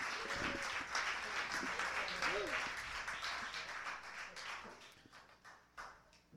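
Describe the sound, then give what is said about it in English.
Steady audience applause fills the space, a dense wash of many hands clapping at once, gradually thinning toward the end with a few scattered claps and faint voices underneath. “Give it up, ladies and gentlemen.”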